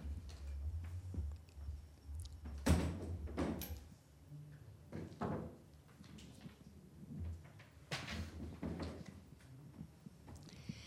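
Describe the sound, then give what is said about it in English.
A chair being carried over and set down: a few separate wooden knocks and thumps spaced several seconds apart, with faint scraping and a low rumble, no one speaking. “I'm going to get a chair, though, because I'm old.”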